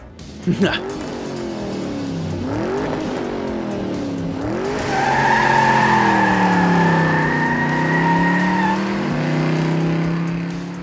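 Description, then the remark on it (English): A car engine revs loudly, its pitch rising and dropping through gear changes, then a long, steady tire screech rides over the engine for several seconds. “They took 75 different car companies, 76, if you count Russia, to make this car just for me.”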